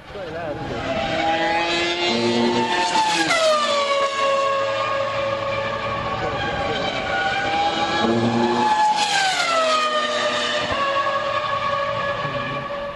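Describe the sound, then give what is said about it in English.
A racing car engine whines loudly and steadily, its pitch climbing and dropping, while a harsh vibrating buzz from tyres running over the jagged edge of track rumble strips cuts in over the engine twice. “really loud buzz that comes in over the engine sound, which is the sound of the rumble strips.”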